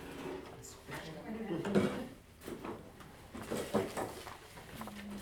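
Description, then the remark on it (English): A chair scrapes and clunks across a hard floor, with a couple of knocking bumps as it is pulled into place amid faint background murmuring. “Yeah, pull a chair over.”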